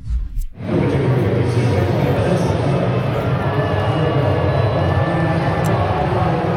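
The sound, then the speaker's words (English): A large crowd of Toronto Blue Jays baseball fans booing a player as he comes onto the field: a dense, low, sustained roar of voices that surges in after a short pause and holds steady and loud for several seconds. “Listen to how the Blue Jays fans greeted him.”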